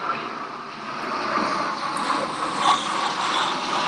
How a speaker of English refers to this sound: Are you by airplanes? Yes, I'm sorry. I am at my parents' house outside, and they live by the airport, so I apologize. Oh, okay. No, that's okay. That's okay. I'm like, oh, that sounds like an airplane. Yeah, it's an army plane, so I apologize.